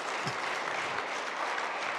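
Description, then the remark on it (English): Steady audience applause for audience members born before 1945 who stand to be recognized, a dense wash of many hands clapping at once, fairly loud and sustained without a break, with no one speaking over it. “Yeah, let's give them a round of applause.”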